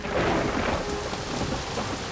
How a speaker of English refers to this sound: The sky opened up, and soon it was pouring. Through the heavy rain, Kuna watched the falls cascade over the cave entrance, into the pool below.